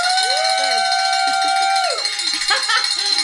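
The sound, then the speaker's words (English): A handbell rings: a bright, sustained metallic ringing with layered high overtones holds steady for about two seconds and then trails off, while people talk over it and a brief rattling clatter follows. “So we're going to have to do the ringing of the bell because I'm slow.”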